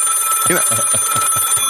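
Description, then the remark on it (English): A telephone rings in a quick run of about six evenly spaced pulses, moderately loud, with a steady high-pitched tone running underneath and no voices. “You know, phone call for Mr.”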